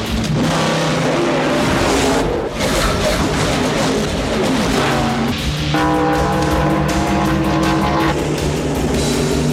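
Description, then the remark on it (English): Race car engines roar loudly and continuously as several cars speed into turn four on the final lap, their whining pitch rising and shifting, with a brief hint of tire squeal in the steady din. “And they're heading into treacherous turn four.”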